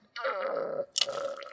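A woman slurps a drink in two drawn-out pulls, the second starting with a sharp hiss of air. The sound is wet, gurgling and fairly loud, with no talking.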